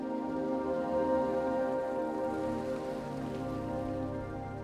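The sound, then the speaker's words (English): Heavy rain pours down steadily, a dense continuous hiss of drops striking a surface, with a faint low hum underneath and no voices. “He looked on as the car pulled away from the curb in the pouring rain.”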